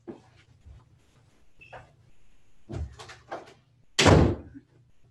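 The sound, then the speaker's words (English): A door in a house is pushed shut with a loud, solid thud near the end, preceded by footsteps and faint handling noises against a low background hum. “Yeah, let me go close my door.”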